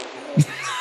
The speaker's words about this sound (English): Don't pay for a therapist or the bathroom because of the cheese. Get it? The lactose problems. Cheese farts.